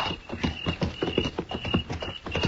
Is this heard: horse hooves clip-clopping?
yes